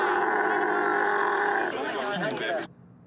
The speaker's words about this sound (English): I guess they always, camels screaming always have a crowd, too.